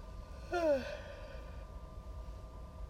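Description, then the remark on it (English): A single breathy yawn with a brief voiced tone that slides downward and trails off into an airy exhale, then quiet background noise. “Excuse me, I just yawned.”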